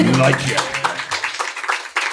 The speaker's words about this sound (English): I love like the golf ripple of applause. Like, very good.